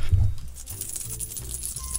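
Loose change jingles and clinks in a person's pocket, shaken in a steady run of metallic rattles after a soft muffled thump at the start, with no one speaking, as listeners guess how much money is in the pocket.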